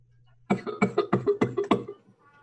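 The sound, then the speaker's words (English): A person coughs in a rapid fit of about seven harsh, closely spaced bursts, fairly loud, with no talking. “Also, in case anyone is worried that coughing is in character, … is not just dying on us.”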